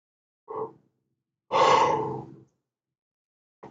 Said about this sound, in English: Sorry, I yawn when this happens. Because everything is energy, including beliefs, and my body reacts when energy shifts.